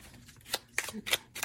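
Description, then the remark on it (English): A deck of archetype cards is shuffled, with several quick, crisp riffling bursts in an irregular rhythm, fairly quiet, with no talking. “But what I'm gonna do is shuffle an archetypes card and see what archetype is stepping forward to represent Saturn in the ninth house.”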